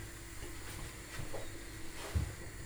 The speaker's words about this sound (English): The potatoes are boiling over!